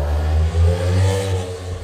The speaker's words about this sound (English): I think that was one of those little scooter things. It wasn't a motorcycle because it had that little thingy in the back.